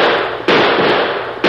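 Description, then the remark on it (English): Three loud gunshots crack out in quick, uneven succession, fired at a man getting away toward the horses, each sharp blast trailing into a harsh, noisy wash that fills the gaps, with no voices. “I think I winged him.”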